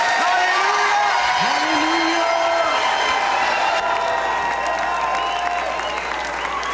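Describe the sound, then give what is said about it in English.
A church audience shouts amen and cheers in praise, loud, with steady clapping and rising whoops, a continuous roar of many voices that holds for the whole stretch. “In Jesus' mighty name, and the church shouts, amen and amen.”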